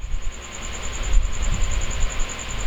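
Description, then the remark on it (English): A cricket in a recording studio chirps continuously in a rapid, even train of high-pitched pulses, steady and fairly faint, over a low rumbling background hiss with no one speaking. “Apparently, I have a new mascot in the studio. It's a fucking cricket.”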